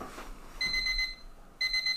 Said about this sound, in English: Oh, is that your alarm? Yeah, it was some sort of alarm. I'm boiling potatoes right now.